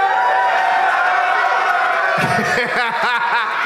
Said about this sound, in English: It was like half the crowd knows the chant and the other half is just here to have a nice time on a Friday afternoon, the first Doug Loves Movies ever at Skankfest.